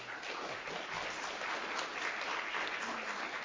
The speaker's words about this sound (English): Thank you very much to our host, Representative Cartwright. Thank you very much to our panelists. I think they deserve one last round of applause.